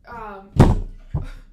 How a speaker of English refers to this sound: Did you see those reflexes? It's still dry. Let me drop the water bottle and then caught it. Cat-like reflexes.